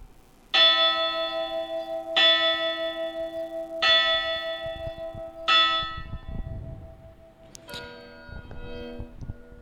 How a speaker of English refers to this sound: If you're like, why the piss am I hearing church bells? So am I. I chose church bells because I thought that would be, you know, topical.